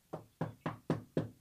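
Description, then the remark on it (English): A quick series of six firm knocks on a door, evenly spaced and fairly loud, each a hollow thud that dies away quickly, with no voices. “Who's knocking on the door?”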